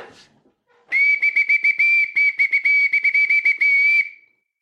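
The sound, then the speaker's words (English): A bosun's whistle kept on a desk is blown: a loud, shrill steady tone around three seconds long, warbling with rapid trills and flutters before cutting off cleanly. “That, my friends, is a bosun's whistle that I happen to have on my desk,”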